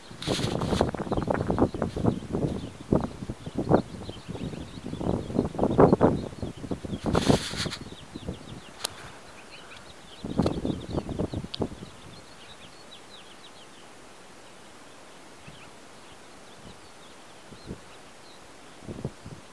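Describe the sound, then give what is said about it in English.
Gusty spring wind buffets the microphone and rustles leaves outdoors, loud in the first half and calmer later, while small birds chirp faintly and intermittently in the background. “I'm gonna let you hear the wind and the birds today.”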